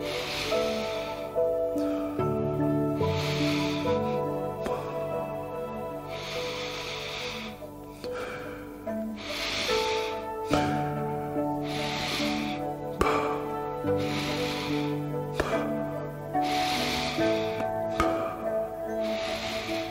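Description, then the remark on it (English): Deep, forceful guided breaths repeat in a steady rhythm, about one every two to three seconds, each a loud airy rush over sustained, droning background music. “Keep breathing this way and fill your body up with oxygen.”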